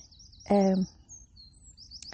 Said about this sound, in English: I found a space where I can't quite hear the sea too much. There's no breeze. And all the Tweety birdies and the Squawky birdies are making noise. I'm hoping it'll come across nice for you.